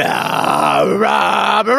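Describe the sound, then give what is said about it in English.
A person voices a long, loud growl, a sustained rough vocal snarl that dips in pitch midway and rises again before cutting off briefly near the end. “So with that kind of vigor, he's going to propel forward towards Manette and grasp her by her giant heel and growl.”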